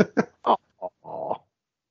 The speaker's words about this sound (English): Sorry if you hear my dog. He's got a toy next to me.